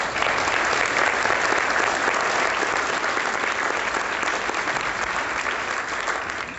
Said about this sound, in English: And let's turn this into a little bit more of a conversation after we give our esteemed panel a round of applause.